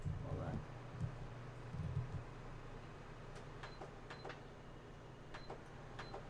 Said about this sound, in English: I have to turn this fan on because I am getting warm. I got windows open, doors open. There we go.